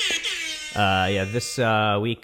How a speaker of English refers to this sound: It's got some premature ejaculation going on here with the air horn noise, but you know that's bound to happen.